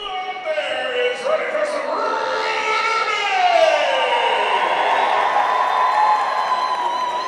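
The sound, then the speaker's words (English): A packed, standing-room-only crowd at a local roller derby event fills a gymnasium on the 7th floor of the Masonic Temple in Detroit with a loud, steady roar of overlapping voices, high shouts and whoops rising above the din throughout, with no break in the noise. “I'm in a random gymnasium on the 7th floor of the Masonic Temple that I never even knew existed, and it is packed, like standing room only.”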